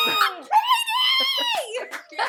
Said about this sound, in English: Any reactions? I know, they're screaming. They're so happy.